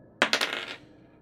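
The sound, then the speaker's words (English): Dice clatter onto a hard table surface with a few sharp, bright impacts in quick succession, then a short rattling tumble that fades out, fairly loud, with no voices; rolled for an attack in a tabletop game. “I have so many dice out for tonight's game because I just had a feeling that we were going to be.”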